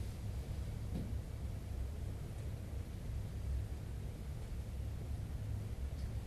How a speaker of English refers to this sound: We can hear the rumbling of the air conditioning, hear the gurgling of the fighting.